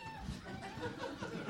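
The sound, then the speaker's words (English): A toy monkey yells in a shrill, warbling electronic screech that runs continuously for over a second at moderate volume, with a noisy room murmur underneath. “The Woot Monkey's yelling.”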